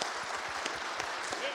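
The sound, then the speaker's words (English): A large audience at First Baptist Church claps steadily during an Easter morning service, celebrating the resurrection of Jesus Christ, dense overlapping hand claps filling the space in a continuous wash of applause, with a faint murmur of voices underneath. “We can get excited about. I mean, if there's anything to clap about, it's the resurrection of Jesus Christ, right?”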